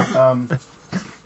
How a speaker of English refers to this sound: And excuse me, I've got a dog that's getting sick right here.